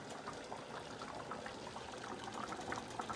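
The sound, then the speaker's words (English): A mixture boiling rapidly in a pot on heat setting 7, not full heat, while being stirred as it thickens: a steady, dense bubbling with countless small pops and gurgles running continuously at a fairly soft level, with no one talking. “It's boiling rapidly. If I shut up, you guys can hear it.”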